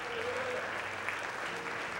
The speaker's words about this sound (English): Also, wanted to make sure that you are gearing up for revival in just a couple of weeks. The great Reverend Lane Sargent will be with us, and we're excited about that. We can clap for that. That's okay.